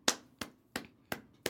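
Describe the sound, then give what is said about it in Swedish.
Five sharp hand claps in a steady, even rhythm, each a crisp bright smack with a short decay, clapped along to a song, without any voice. “Man måste klappa till också.”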